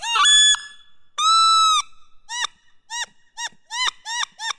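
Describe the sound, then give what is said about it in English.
Imitated wood duck sitting calls, likely made on a call: two drawn-out, squealing notes followed by a quick series of short, rising whistled peeps, loud with no talking. “So he came up with all the sitting sounds of a wood duck, which they do many sitting sounds.”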